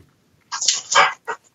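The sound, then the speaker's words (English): A Labrador dog lets out a quick series of sharp barks: a longer rough burst followed by two short yaps, with no talking underneath. “What kind of dog you got there? Let's talk about your dog, baby. What kind? It's a Labrador.”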